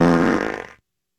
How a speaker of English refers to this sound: He was farting?